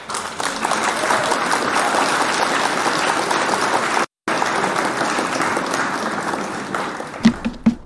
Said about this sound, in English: Hit the claps for Tina Marie, would you, por favor?